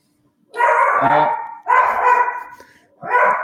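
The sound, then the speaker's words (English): A dog barks in three loud, drawn-out, almost howling bursts, the last one shorter, with no one speaking over them. “We now have dog price prediction also, folks.”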